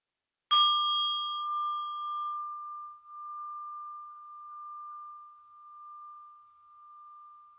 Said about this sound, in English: Let's try it a couple of times more. I will ring the bell again.